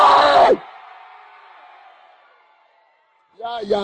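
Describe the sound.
A crowd lets out a loud, short collective shout of 'hey' in response to a speaker's call to shout. It rings and echoes before fading away. Then a single voice begins speaking.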